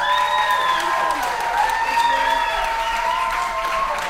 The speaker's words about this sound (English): Round of applause